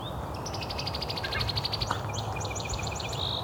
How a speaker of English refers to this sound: It's also a song sparrow.